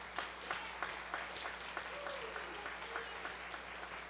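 audience clapping hands

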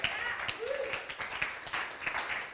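audience clapping

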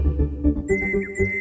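birds chirping

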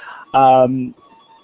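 telephone ringing

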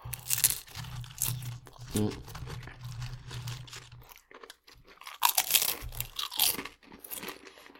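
crunching chips

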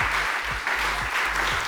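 round of applause

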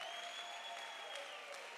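audience clapping hands

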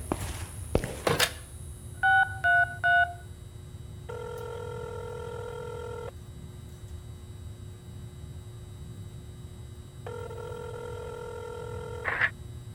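telephone keypad dialing tones

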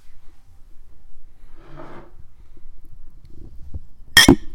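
glasses clinking

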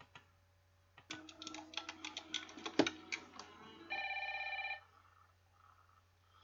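telephone ringing

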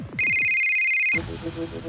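phone ringtone

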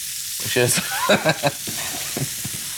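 food sizzling

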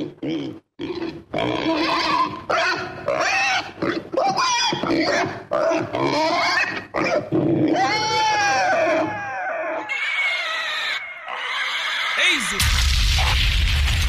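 pig grunting

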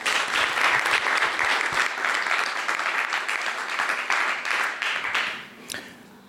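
audience applause

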